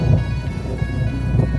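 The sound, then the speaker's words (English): Rain pouring steadily onto ocean waves, heard from underneath the water, a dense, continuous wash with a deep low rumble underneath, fairly loud and even throughout, with no voices. “Rain falling on the waves, a ripple expanding across the surface, the sound of the ocean from underneath the water.”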